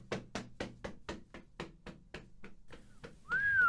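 A person whistles a loud, rising tone at the very end, after a quick, steady run of sharp knocking taps. No one speaks.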